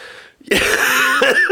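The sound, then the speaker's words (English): A loud, raspy cough from a person who has been sick for about a month bursts out after a soft intake of breath, rattling on for about a second with a rough, throaty texture. No one speaks. “Yeah, this cough.”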